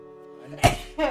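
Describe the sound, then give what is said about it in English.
A single sneeze: a short voiced build-up breaks into a sharp, explosive burst of breath, followed by a brief noisy exhale. “Gesundheit.”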